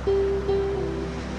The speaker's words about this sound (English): Just listen to the rhythmic breath and the sound of the waves.